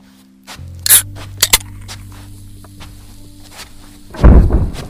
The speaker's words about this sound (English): What the hell was that? Sam. He's trashing a bedroom.